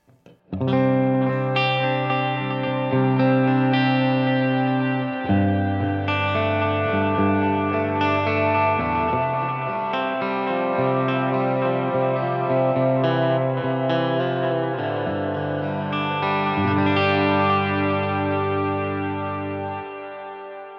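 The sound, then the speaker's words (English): A sustained, effects-laden electric guitar, with its tone control turned up a bit and reverb added, plays held chords that blend and swell, with a washy reverberant tail smoothing the changes into a continuous ambient texture, fairly loud and without any talking. “Now let's add some reverb into that.”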